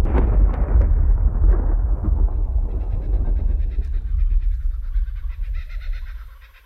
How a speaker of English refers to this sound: Thunderstorm had just passed over the little farmhouse. You could still hear a faint thunder rolling up the valley of Tantraboo.